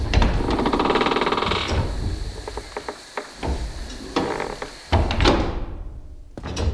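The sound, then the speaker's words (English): Vast, heavy wooden doors of an asylum, at least a few hundred years old, grind and creak open, with scraping friction and a series of knocks and thuds, fairly loud, ending in a dull thump. “These vast wooden doors are at least a few hundred years old.”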